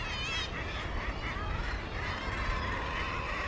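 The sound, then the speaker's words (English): A dense chorus of seabirds, including puffins, nesting gulls, guillemots, auks, shags and kittiwakes, calls constantly from a busy island cliff colony, overlapping honking and squawking cries layered over a steady background roar, with no pauses. “You can't really escape from the noise of the birds. It's constant.”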